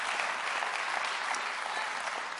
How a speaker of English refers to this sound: Somebody clap your hands to the Lord and give him praise.